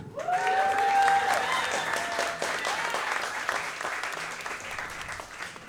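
An audience applauds steadily for several seconds, a dense wash of clapping with a few whoops and cheers rising over it near the start, then gradually thinning.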